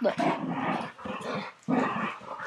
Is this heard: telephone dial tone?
no